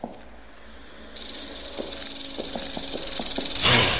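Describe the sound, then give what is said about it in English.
A snake hisses steadily, a sustained airy hiss that swells louder toward the end, with a few faint ticking clicks underneath and no voices. “Oh, there's a snake over there.”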